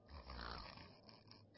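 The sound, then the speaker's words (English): A single heavy, rasping snore lasting over a second, a rough guttural rattle with a low rumble underneath, with no talking. “… does incredible snoring.”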